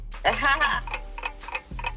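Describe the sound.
A ticking clock timer effect counting down 30 seconds, steady, evenly spaced ticks sounding clear, following a brief burst of voice-like sound at the start.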